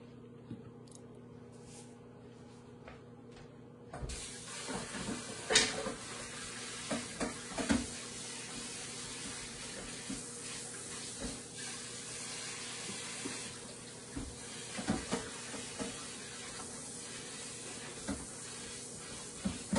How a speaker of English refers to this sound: It's just in the microwave, 2 minutes, 15 seconds.